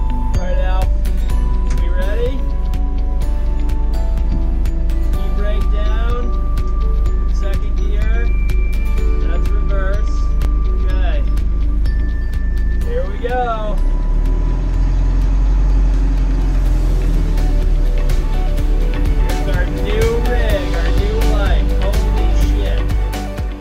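A truck engine, just started up, rumbles loud, running steadily the whole time with a deep, constant drone, while faint chirps and light clinks come and go above it.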